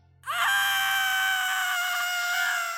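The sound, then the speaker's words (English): A young girl's shrill, high-pitched scream bursts in abruptly and holds steady and loud for over two seconds, alone with no other sounds, as she is lifted off the ground by the sides of her face and hangs in midair. “She lifted her off the ground by the sides of her face. The child hung in midair, screaming.”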